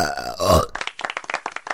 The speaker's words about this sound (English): That's like my second burp.